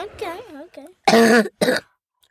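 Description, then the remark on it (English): A short throaty vocal sound, then two loud coughs in quick succession, the first longer and harsher than the second, with no talking around them. “I don't think a cough can spread through a computer.”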